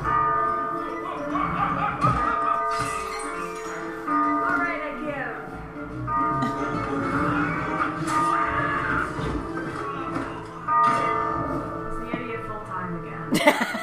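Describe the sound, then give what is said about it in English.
A large bell clangs repeatedly, its deep ringing tones lingering and overlapping throughout, with a few sharper strikes standing out and faint voices or laughter mixed in underneath. “Oh, he actually managed to get out of the way of the bell.”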